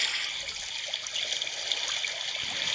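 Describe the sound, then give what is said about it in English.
Evening lake ambience: a steady, soft wash of moving water with a bright, hissy texture and small trickling ripples, holding an even level throughout with no voices. “What about an evening lake?”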